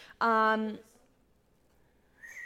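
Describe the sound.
A failed attempt at whistling: a short, loud voiced hoot that lasts about half a second, followed by quiet and then a faint, breathy, wavering tone right at the end.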